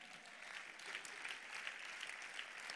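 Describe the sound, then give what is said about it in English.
An audience claps steadily for about three seconds, many hands blending into a dense, even patter with no voices over it and no clear rise or fall in volume. “Clap your hand.”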